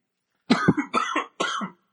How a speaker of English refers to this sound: As I'm coughing, we're going to wrap it up in just a minute.